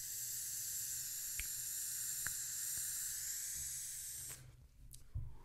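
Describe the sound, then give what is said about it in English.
An e-cigarette coil, a Type 2 on an Argus GT with a Just Try It drip tip, sizzles steadily for about four seconds, a bright crackling hiss with a few sharp pops, then cuts off, leaving faint rustling. “These are my pleasure vapes that I've been pleasure vaping.”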